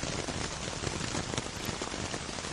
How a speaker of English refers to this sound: Meditation is hard, and if it's about clearing your mind, then maybe hearing raindrops on canvas is just what you need. Certainly distracting.